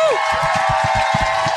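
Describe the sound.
An audience at a live show breaks into loud, sustained applause for the show's producer, a dense wash of clapping mixed with crowd voices and a steady rhythm of low thumps underneath.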